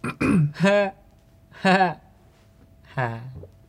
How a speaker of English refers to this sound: Sorry, I'm just like trying not to burp.